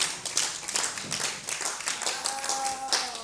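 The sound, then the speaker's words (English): Scattered hand claps from a small audience, sparse and uneven rather than full applause, continuing steadily for a few seconds at moderate loudness with no one speaking. “So if you want to clap, clap.”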